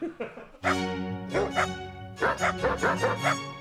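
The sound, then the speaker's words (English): A dog barks loudly in a rapid, continuous volley of harsh, tonal barks, after a brief murmur of voice at the start. “Dog break.”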